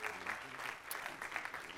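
applause

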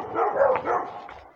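guard dog barking

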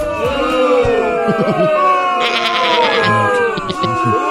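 goat bleating

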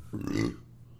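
burp

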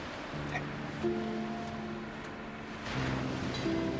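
ocean waves and surf

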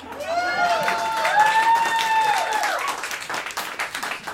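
audience cheering

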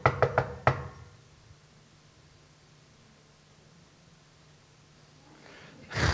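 knocking on a door

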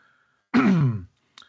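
cough and throat clearing

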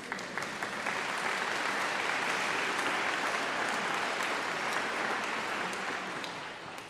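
audience applauding

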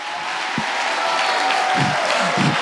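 audience clapping

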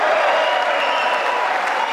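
applause

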